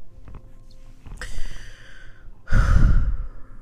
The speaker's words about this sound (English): I got to blow my nose. 1 second.